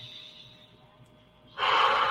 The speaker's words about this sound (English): Take deep breaths in of this cosmic knowledge. Release. Deep breath in. Release. One more. Breathing in the flame of cosmic knowledge.